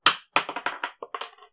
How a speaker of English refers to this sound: Should we, like, roll a dice? I can roll dice.